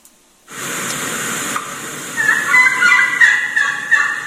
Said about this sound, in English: You hear that bird right there? Sounds like a hen. That's a young gobbler calling right there.